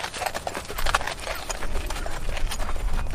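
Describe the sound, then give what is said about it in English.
Horse hooves clip-clopping at an unhurried walking pace as a horse pulling a cart wanders off into a forest, a steady run of sharp knocks over a soft noisy background, with no one speaking. “And his cart was full, and he got inside and fell asleep, and the horse started wandering off into the forest.”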